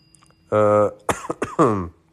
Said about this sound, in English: I've been coughing a lot today. I don't know.